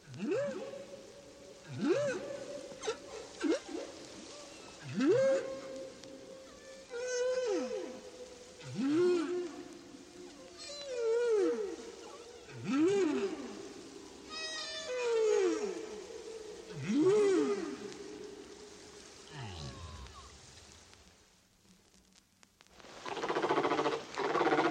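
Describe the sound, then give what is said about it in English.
Humpback whale song recorded five years after an earlier recorded song: a steady series of swooping moans and upsweeps repeating every few seconds, layered with higher squeaks and chirps over a constant hiss, ending in a brief noisy rush. “Here's a song recorded 5 years after the one we just heard.”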